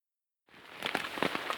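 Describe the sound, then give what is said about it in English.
Rain pattering on a kids' tent at a campsite on the Pacific Crest Trail in Washington State, north of the Columbia River, a steady hiss of falling water with scattered louder drops tapping irregularly on the fabric, beginning abruptly after a moment of silence. “Well, our family is out on the Pacific Crest Trail right now in lots of rain, getting wet, but we're all huddled inside the kids' tent right now eating our Thanksgiving dinner.”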